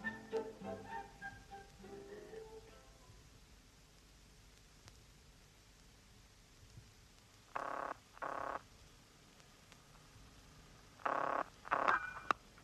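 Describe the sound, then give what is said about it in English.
A telephone being dialed in a phone box in a corridor, calling Scotland Yard: four short, clear tone bursts in two quick pairs, separated by a few seconds, following a quiet stretch with a faint muffled sound at the start. “I want to make a phone call.”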